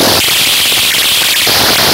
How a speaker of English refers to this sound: Megan can hear the TV turn on and off in the other room. And then static.